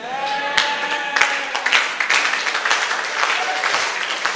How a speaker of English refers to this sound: The way you are clapping, I feel you are sad and you are not happy.